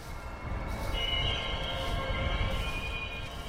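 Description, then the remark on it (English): An orange BNSF freight engine rumbles steadily past on tracks a little more than 1,000 yards away, beside a marsh on the Columbia River across from Portland, its deep low roar joined after a moment by a sustained, high-pitched metallic wheel squeal that persists to the end. “An orange BNSF engine squeals by a little more than 1,000 yards from the scientists as they prepare fish traps and other sampling gear.”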